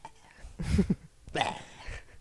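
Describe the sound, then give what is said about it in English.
A voice imitates a throaty rap ad-lib, two short rasping bursts that sound like coughing up phlegm or a hairball, with a brief pause between them. “I just sound like I'm fucking coughing up a hairball.”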